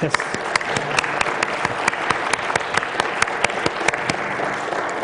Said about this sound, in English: Yeah, let's give him applause right now.